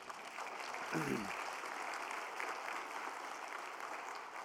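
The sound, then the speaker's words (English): An audience applauds the orchestra and worship leading with steady, dense clapping that fills the whole stretch at an even level, and a single voice briefly calls out near the start. “You can say amen, you can clap, give more money in the offering plate, whatever you want to do to express your appreciation, but that was great.”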